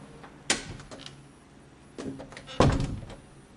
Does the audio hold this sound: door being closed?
yes